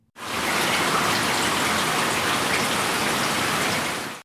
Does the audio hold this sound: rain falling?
yes